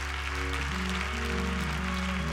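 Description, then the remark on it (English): An audience claps hands to thank God in a steady, dense wash of applause, with sustained low organ or keyboard tones holding underneath throughout. “Clap your hands and thank God.”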